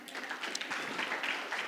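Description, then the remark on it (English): A room full of people applauding themselves: a dense, steady wash of many hands clapping together, sustained evenly for under two seconds with no speech over it. “Y'all can give yourselves an applause.”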